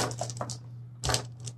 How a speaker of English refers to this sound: It's nine dice. So give me a roll of nine dice.